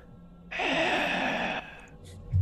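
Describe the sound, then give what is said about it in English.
A person imitates one deep, breathy inhale or sigh, lasting about a second, fairly loud, with quiet background noise before and after and no talking. “There's a breathing in the distance. It's short and faint, but you definitely hear kind of like a deep.”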